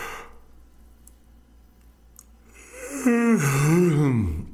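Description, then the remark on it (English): After a few quiet seconds, a person lets out a loud, drawn-out deliberate fake yawn, breathy at first, then a voiced moan that rises and sinks in pitch before trailing off. “That was a fake yawn, actually. I didn't even yawn.”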